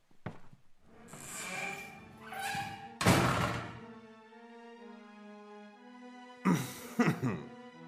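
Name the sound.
door being closed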